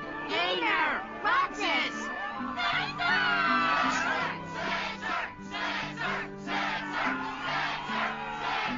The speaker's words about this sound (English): Yes, the crowd is fired up, so you know what comes next!